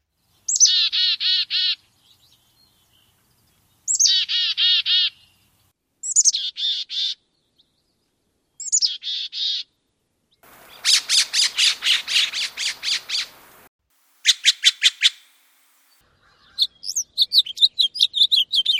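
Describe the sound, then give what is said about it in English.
Clear calls of mountain bird species in repeated bursts: several buzzy, descending phrases with pauses between, then a rapid harsh chattering series and quick sharp chips, with no talking over them. “making our hills alive with the song of bird sounds, are the mountain species.”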